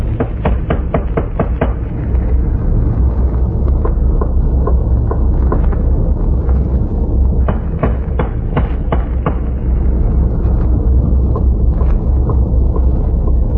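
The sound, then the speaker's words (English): A series of sharp metallic knocks rings out as someone taps on a main bunker hatch: a quick cluster at first, then more irregular taps after a pause, over a constant low rumbling background. “I'll tap on the hatch.”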